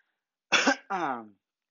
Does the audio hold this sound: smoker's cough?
yes